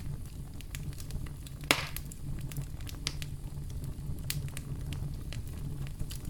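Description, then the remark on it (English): A crackling campfire with irregular pops and snaps over a steady low roar, one sharp louder pop early on, no voices. “step on up to the campfire here and please tell us your memorable story.”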